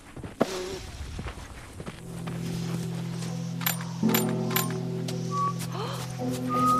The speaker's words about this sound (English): But yeah, here is … trying to whistle and failing and then successfully whistling.